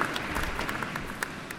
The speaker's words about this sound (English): Give yourselves a round of applause for participating in those three events. That's a huge commitment.